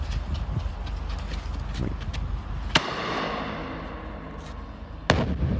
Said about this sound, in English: So these dudes are fucking with fireworks underneath a bridge in a tunnel.